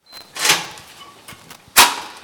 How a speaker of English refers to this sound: With the swipe of a card key that opens a heavy security door, I'm going to the scientific front line in California's decades-long war against air pollution.